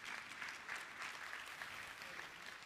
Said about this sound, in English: That's awesome. Come on, you can clap.